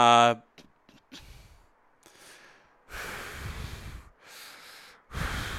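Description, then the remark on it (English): A man breathes heavily right into a microphone while stroking his beard: a brief voiced sound, then several long, rough, noisy exhales and inhales in an uneven rhythm, loud and breathy with no words. “breathing heavy. He's stroking sure his beard.”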